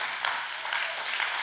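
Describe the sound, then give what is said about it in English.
A large audience at a church service applauds steadily, giving the Lord a hand clap of praise: many hands clapping at once in a dense, continuous wash of sound that stays fairly even throughout, with no voices standing out. “Will you stand with me and give the Lord a hand clap of praise if you believe he's bigger?”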